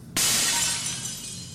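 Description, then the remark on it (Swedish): A sudden loud crash as a loose glass sheet, about 4 to 6 meters, falls into a shop's cheese counter after a person stands on it and shatters, followed by a bright, sustained cascade of tinkling fragments that slowly fades. No voices. “Så att det är typ 4-6 meter glas som bara åker rakt ner i ostdisken.”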